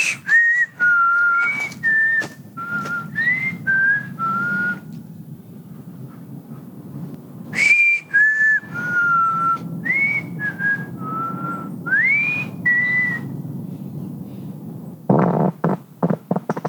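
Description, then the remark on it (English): A person whistles an imitation of a bird call in two runs of short, clear notes that hop up and down in pitch with little slides, over a low rumbling background, ending in a noisy burst. “No, in a bird call type of way.”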